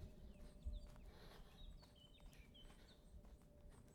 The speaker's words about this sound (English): Birds are tweeting.